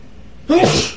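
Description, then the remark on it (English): A single loud sneeze bursts out abruptly after a brief quiet moment, a sharp voiced 'achoo' with a breathy, hissing tail. “Bless you.”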